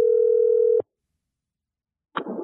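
A steady phone dial tone hums loudly for under a second while calling a mobile phone, cuts off abruptly, then after a silent pause a short burst of noisy line sound follows.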